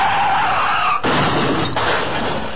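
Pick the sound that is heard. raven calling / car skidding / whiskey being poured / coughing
car skidding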